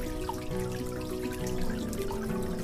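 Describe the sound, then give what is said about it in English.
Water drips from a faucet, a few separate plinking drops spaced unevenly over a steady tonal hum, moderately loud, with no voices. “Do you have dripping faucets?”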